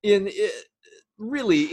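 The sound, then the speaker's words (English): A person voices a low, gurgling, burp-like blurp in two close bursts with a short pause between them, imitating a large bubble rising from the bottom of a lake and breaking the surface, like a bathtub fart. “Evoking the kinds of bathtub farting that we might have done in our childhood.”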